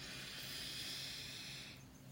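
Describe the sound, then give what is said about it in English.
A single long, airy breath drawn in as a final deep breath during a guided meditation, a soft steady hiss lasting under two seconds before fading. No one speaks. “Take one final deep breath in, breathing in all that happiness.”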